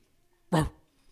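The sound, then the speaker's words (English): A single sharp dog bark, loud, lasting only a fraction of a second before fading into near silence. “Can you bark?”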